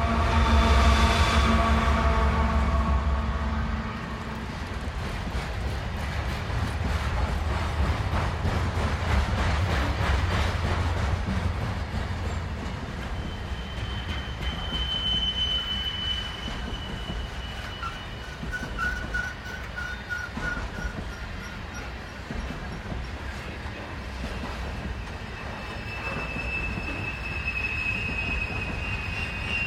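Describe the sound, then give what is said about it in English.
A coal train winds its way along the tracks through Colorado, its wheels clattering in a continuous rhythm with occasional high metallic squeals, loud throughout, with a deep rumble underneath and no voices. “We leave you this week with the rhythm of a coal train winding its way through Colorado.”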